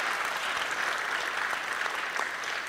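Steady applause from an audience thanking a speaker after a talk, a dense wash of many hands clapping at an even, fairly loud level throughout, with no voices standing out.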